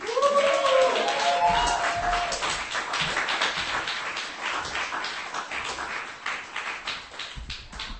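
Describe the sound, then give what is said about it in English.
An audience claps steadily for several seconds as a performer is welcomed to the stage, a dense wash of hand claps with a brief whoop near the start, gradually thinning toward the end. “Ladies and gentlemen, please clap to the stage”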